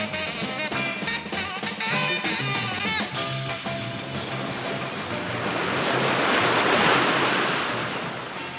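Surf rolls in and breaks on the beach at Rosnaula Strand, a steady wash of foamy noise that swells louder toward the end, with no voices heard.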